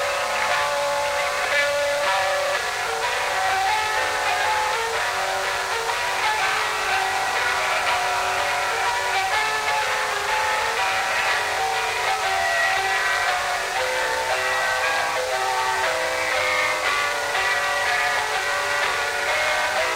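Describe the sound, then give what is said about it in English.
President Nixon plays the Missouri Waltz on a piano he presented to the Truman Library in Independence, Missouri. The waltz has a steady, flowing melody and chords at an even loudness for the whole stretch, with no voices over it. “That's the Missouri Waltz.”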